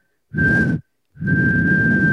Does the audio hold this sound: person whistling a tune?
yes